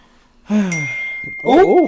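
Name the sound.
phone notification ding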